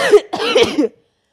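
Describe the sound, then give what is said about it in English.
A single loud sneeze, a short sharp intake followed by a longer breathy, voiced burst, heard on its own before the sound cuts to silence. “Hey, bless me. Bless you.”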